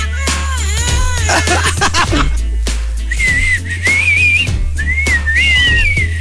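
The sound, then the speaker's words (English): A voice sings a very high, thin whistle-register tone, sustained and gliding up and down for about three seconds, loud, after a brief flurry of lower vocal sounds. “That's like dapat whistle pitch tone.”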